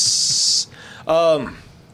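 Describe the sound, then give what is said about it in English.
A voice imitates a quiet fart with a steady, airy hiss lasting about half a second. After a short pause comes a brief voiced sound that slides downward in pitch. “The ninja farts. I'm going to just be sneaking through.”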